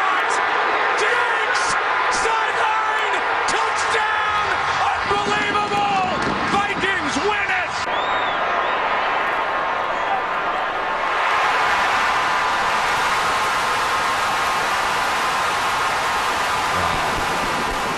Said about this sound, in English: That's how loud, like, where would you rank the sports crowd pop of all the arenas and stadiums you've ever been inside as a fan, as a guy who covers teams? Is that number one in terms of an oh my God loud moment of something exciting happening?